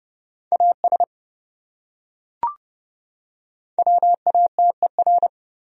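Morse code sending words from a list of the top 100 words at a quick 30 words per minute: steady mid-pitched beeps keyed in short dots and longer dashes, a brief group, a pause with a single click, then a longer run.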